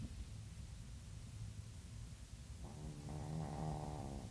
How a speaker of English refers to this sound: Okay. My dog is fully snoring.